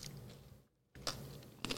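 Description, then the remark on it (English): Crisp crunching of a chip-like snack being chewed, with a short quiet gap before a few more loud, brittle bites. No one speaks. “it was crunchy.”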